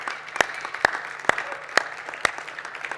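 A church audience applauding, a dense wash of many hands clapping with sharper, louder beats landing in a steady rhythm about twice a second. No one speaks over it.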